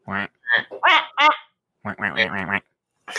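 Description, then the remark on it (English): A wooden duck whistle, blown into, quacks in a quick run of nasal, raspy bursts, then a short pause and a longer, buzzier stretch of quacking, fairly loud. “Oh, I got a wooden duck whistle.”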